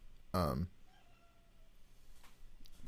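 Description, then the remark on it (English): A cat in a living room lets out one loud, short meow, then the scene drops to a low, quiet background with only faint rustling afterward. “I thought I heard a hissing cat.”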